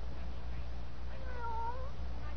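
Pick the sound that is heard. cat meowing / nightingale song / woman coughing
cat meowing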